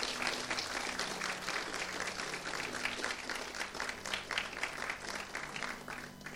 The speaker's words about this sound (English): Come on, give the Lord a clap offering this morning.